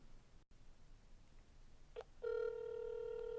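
A brief electronic blip, then a steady, loud ringback tone through a phone line begins and holds without a break against a faint background hiss, with no one talking.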